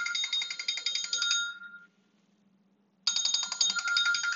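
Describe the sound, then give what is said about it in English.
A phone someone left in the room rings with a bright, trilling electronic notification tone, sounding in two bursts separated by a pause of about a second, clear with no talking. “Somebody left their phone in here.”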